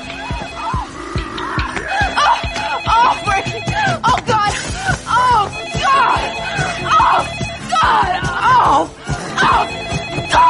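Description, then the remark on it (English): A telephone rings repeatedly through the whole stretch, fairly loud, while several voices talk and laugh over it. “She just happily answers the phone in the middle of it as well.”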